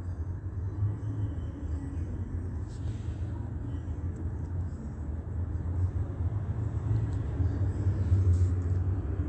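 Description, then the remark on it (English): Heavy engine rumble from an Omnitrans route 61 city bus going westbound at 9:55 a.m., steady and low, growing somewhat louder toward the end as it passes. Nobody speaks. “That is, yeah, I heard Omnitrans 61 going westbound.”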